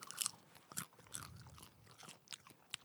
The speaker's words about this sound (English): Oh, these smell good. I have an issue with popcorn, so I got to munch around on it. Is it the kernel skins? It is.